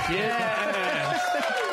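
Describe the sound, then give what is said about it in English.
A crowd cheer sound effect, played by pressing a cheer button: many voices shouting and whooping together in a dense, steady roar that holds at full strength for under two seconds. “Add the cheer button now.”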